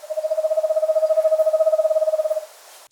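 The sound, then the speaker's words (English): An eastern screech owl gives a steady, monotone purring trill, a rapid even series of soft hoots running for over two seconds at a single pitch, clear with no voices. “They also produce a purring trill that lasts 3 to 5 seconds.”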